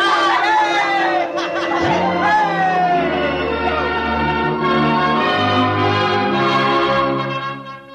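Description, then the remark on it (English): Church bells of the Baptist, Congregationalist and Roman Catholic churches ring loudly and continuously, their overlapping tones clanging together while a crowd chatters, shouts, laughs and cheers underneath, the whole din fading slightly at the very end. “The bells of the Baptist, the Congregationalist, and the Roman Catholic Church were ringing.”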